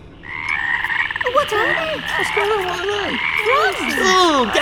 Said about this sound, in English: What are they? Frogs! Oh, get off! Help! Oh, they're all slimy! Frogs?